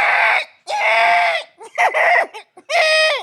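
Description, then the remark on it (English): A man vocally imitates a blaring Apple warning klaxon: loud, strained, screechy wails, two long blasts, then choppy shorter bursts and a final sustained one, with no other sound. “give the Apple warning klaxon sound, please”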